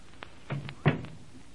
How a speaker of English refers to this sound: This is a library. You must be very quiet. All right. Now, let me close this door.